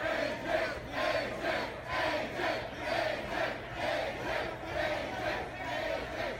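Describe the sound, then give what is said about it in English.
A large crowd chants in unison for wrestler AJ Styles as he comes up to his table to start signing autographs, a loud, steady rhythmic cheer that repeats about eight times with even beats, voices blending into one roaring chorus throughout. “And that's the crowd chanting for AJ Styles when he comes up to his table there to start signing for all of us.”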